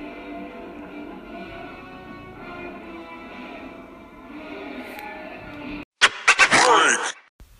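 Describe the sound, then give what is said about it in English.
A person snoring late at night: a long, droning snore-like groan rumbles steadily for several seconds, then cuts off and gives way to a short burst of loud, harsh, crackling noise. “Bro, monster snoring like a monster.”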